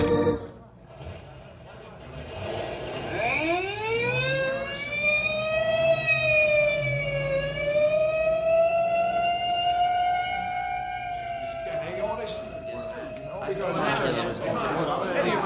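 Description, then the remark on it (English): An ambulance siren winds up into a loud, steady wail that holds for several seconds before cutting off into rushing noise, with faint voices murmuring in the background. “may I go along with you in the ambulance?”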